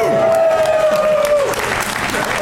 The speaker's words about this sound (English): I get up. I like the applause. It gets me up like Tinkerbell.